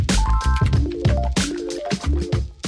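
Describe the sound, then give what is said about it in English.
Wine from the corner store Madeira Liquor glugs out of a bottle into a glass at home in a steady run of gurgling bursts, the ringing tone climbing in pitch as the glass fills. No one speaks. “So when I record these episodes at home, I like to have a glass of wine from my corner store, Madeira Liquor.”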